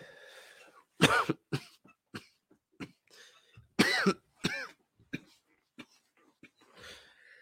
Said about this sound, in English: You know, you got to put the J down when you start coughing. Let me just put it down. I feel like everything after that is going to be more cough.